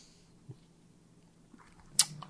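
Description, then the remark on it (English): Someone sips tap water: a soft mouth click, then a quiet pause and a sharp wet gulp near the end, with no talking. “I took a sip of water right when you said that, so it took me a moment.”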